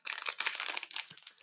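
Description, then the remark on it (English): Continuous crinkling and rustling of pink-lined wrapping paper and plastic being pulled open to unwrap a strawberry wafer cookie, a busy crackle that rises and dips for about a second and a half, with no voices. “Even the wrapping paper is pink on the inside.”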